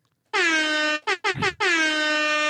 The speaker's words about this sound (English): can we get the air horn?